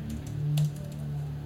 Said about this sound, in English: I'm typing things. Okay, I'm typing things, fuckers.